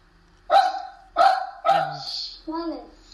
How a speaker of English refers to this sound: Sorry, my dog's being a bit nuisance.